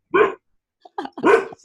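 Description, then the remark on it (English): A dog, Vienna, barks loudly at someone walking along the lake by the owners' property: two sharp, full barks about a second apart, with a few shorter, softer huffs in between and no one talking. “That's Vienna barking.”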